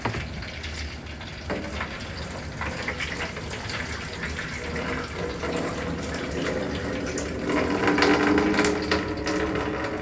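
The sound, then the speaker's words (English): Hot water being drained out of a pot of boiled potatoes while making mashed potatoes, a steady splashing gush that runs the whole time and swells louder near the end, with no talking. “Now, we got our potatoes from our pot. We're gonna just simply drain that water out.”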